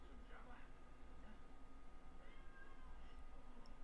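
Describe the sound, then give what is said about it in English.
A cat meows a few times, drawn-out, over a steady low hum with some muffled voices in the background. “Well, that cat's gonna die.”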